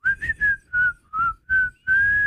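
A person whistles a short, bright tune of about six distinct notes in a bouncy rhythm, fairly loud, with the last note held longer. No one speaks.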